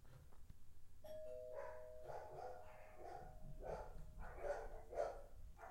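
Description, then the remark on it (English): A doorbell chimes with a sustained ringing tone. A dog answers with a run of loud barks that keep going over the fading chime. “Well, there's my doorbell.”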